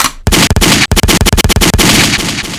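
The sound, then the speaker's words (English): A gunshot sound effect played from a soundboard: a loud burst of rapid gunfire, a quick string of sharp cracks fired in a fast rhythm, followed by a ringing, echoing tail that fades out. “Gunshot.”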